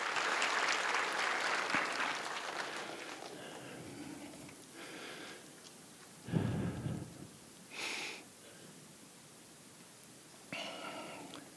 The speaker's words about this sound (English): And and then to the cast, I might have thanked them, of course, personally, but I'd like for you to give them a good round of applause. They have really committed themselves and dedicated many hours of work.